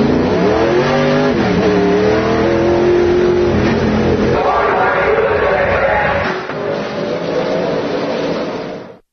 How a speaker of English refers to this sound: Ocean Speedway is located at the Santa Cruz County Fairgrounds, just 2 miles east of downtown Watsonville on Highway 152. Get up and go for the loud, raucous, rip-roaring racing fun this Friday night at Ocean Speedway.